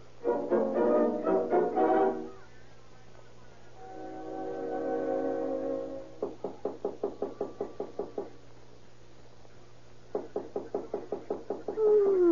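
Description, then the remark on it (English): Rapid knocking on a door at 3:30 at night, a long run of about a dozen even raps, a pause, then another quick burst of knocks. A low sustained horn-like tone sounds briefly between them. “There's somebody knock on the door.”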